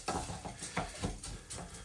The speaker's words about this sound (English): So we're going to pour the cupful of orzo pasta into the bowl here, right? And you're going to stir it around, and you're going to feel how it picks up the oil, and you can see it kind of shimmering, looking really, really good.